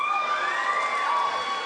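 A crowd of many voices shouts and cheers together in a dense, continuous roar, loud and sustained with overlapping high-pitched whoops throughout.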